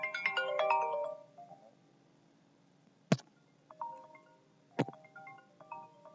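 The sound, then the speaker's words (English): A phone ringtone plays a bright, stacked melodic burst, then quieter tonal chimes follow, punctuated by two sharp clicks, fairly loud with no talking. “I got to answer this phone.”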